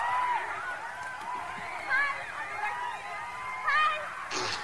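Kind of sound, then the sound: crowd, concert crowd cheering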